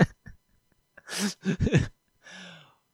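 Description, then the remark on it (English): A sudden sneeze bursts out in a loud, breathy rush with a couple of voiced catches, followed by a softer exhale or sniff as it settles. “Bless you.”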